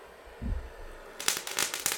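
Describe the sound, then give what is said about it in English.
A soft low thump, then a burst of dry, sharp crackling pops in quick irregular clusters, moderately loud, with a faint steady hiss underneath and no talking: a bay leaf garnish on a cocktail being torched with intense heat from a brulee torch. “And if you wind up torching the bay leaf with intense heat with like a brulee torch, it'll actually make a wonderful sound here, which I'm going to example for you right now.”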